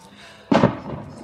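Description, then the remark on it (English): A single muffled boom of fireworks bursting in the neighborhood, a sharp onset followed by a brief rumbling decay against a quiet background. “Oh, we have fireworks in the neighborhood.”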